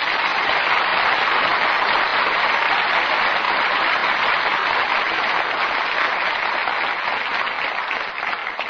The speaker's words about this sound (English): And now you can all sit back and relax and join me in well-earned applause for Richard Widmark, Paul Douglas, and Joyce McKenzie.